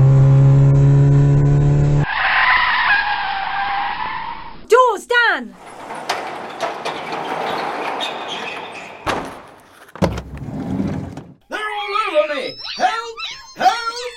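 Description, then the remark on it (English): A car engine roars, then repeated high, sweeping tire screeches rise and fall in pitch as the vehicle swerves toward the bay doors, with excited voices shouting over the noise. “I'm not sure they're gonna get through the doors swerving like that.”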